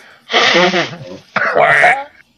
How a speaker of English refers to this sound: Excuse me while I blow my nose.